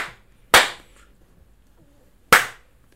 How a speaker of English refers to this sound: That was a delayed third slap, so... Two and a delayed three? Two and a delayed three, yeah.